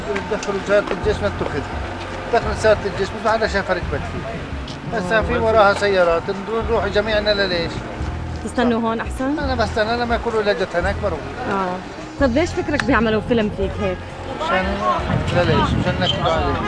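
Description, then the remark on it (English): A busy crowd of overlapping voices talks and calls out, with a steady low engine rumble underneath as people pile into their cars to follow an Israeli military vehicle that just drove by. “So an Israeli military vehicle just drove by that they believe Ahed and her mom are in, but it went that way, so now everybody is getting in their cars to follow them.”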